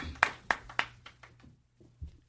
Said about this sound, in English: Todd, can everyone please just give Todd a quick round of applause? He's already passed the first round.